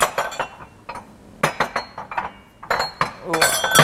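Ceramic cups clink and knock together in an irregular series of sharp, bright taps as someone rummages through a cupboard, with a few louder clatters near the end.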